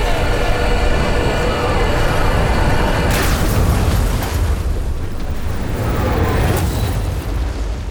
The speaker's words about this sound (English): Our ship just blew up over our heads due to yodeling.